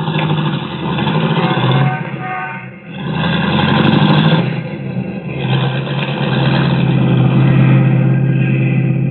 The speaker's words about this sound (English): Then she gets back into the car, and they drive off.